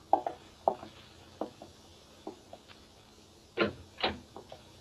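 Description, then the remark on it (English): A door opening: a scatter of small latch clicks and handle rattles, then a couple of louder creaking, scraping bursts near the end. No voices. “I pulled myself together and went out and opened the door.”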